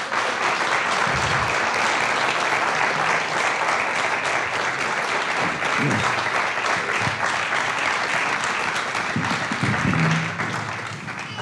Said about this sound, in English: So they're going to bring four chairs up. Would you give them a big round of applause as they come and join us?